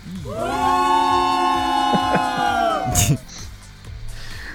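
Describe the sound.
A loud, sustained wave of booing rises quickly and holds steady for about three seconds, a low droning chorus of voices, then cuts off abruptly into quiet background.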